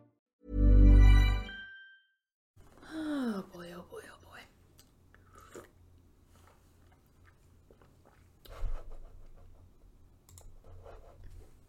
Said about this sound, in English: I'm relaxing to the sounds of a crinkling paper bag in the next room.